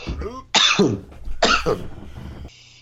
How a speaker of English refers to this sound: My dry cough is from talking too much, so don't get any ideas.